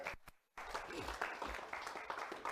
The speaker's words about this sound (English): Somebody give God a hand clap.